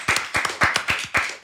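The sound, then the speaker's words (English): Hands clap in a quick, uneven rhythm on the sports show Broken Play, several sharp claps, a few overlapping as though more than one person is clapping, with no one talking. “Clap it up for him one time, two times.”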